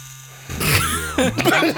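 A tattoo machine hums with a steady, low electric buzz throughout, and people's voices come in over it partway through, partly masking the drone.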